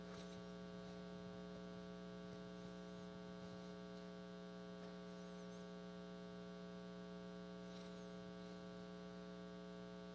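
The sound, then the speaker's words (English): Steady, quiet white noise laced with a strong low electrical hum, running unchanged for about ten seconds with no voices or other events. “You can drift off into white noise or you can stay with me.”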